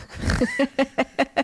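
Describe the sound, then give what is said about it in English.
A puppy named Steven Tyler makes a string of small grunting, snuffling noises, a longer rough sound followed by five short, evenly spaced bursts. “They haven't met this little puppy.”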